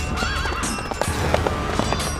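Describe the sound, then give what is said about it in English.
A horse, cut loose from a merchant's cart, lets out a wavering whinny near the start over a steady, fast drumming of hooves as a soldier flees on it at a gallop down a road. Fairly loud throughout, with no one speaking. “A soldier managed to cut the horse loose from the merchant's cart and fled at a gallop down the road.”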